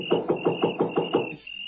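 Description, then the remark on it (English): Seven quick, evenly spaced knocks on the door of a house at night, dull and hollow, rapping in a steady rhythm over a thin, constant high-pitched tone that lingers after the knocking stops. “It was so dark I couldn't see where the doorbell was, so I knocked.”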